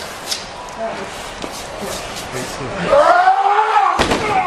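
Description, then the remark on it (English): A sharp, loud crash of a wrestler being knocked through a door by a 500-pound man bursts out near the end, after muffled shuffling and a rising roar of noisy background voices. “Big Show just knocked Kane through the door.”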